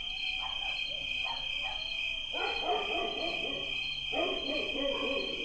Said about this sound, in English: I hear accelerating motorcycles. Oh, it's coyotes. That's what it is. Oh, awesome. Yeah. Isn't that awesome? Holy fuck. Like, the hills are full of coyotes. That is crazy. That's a lot of coyotes. It is a lot of coyotes.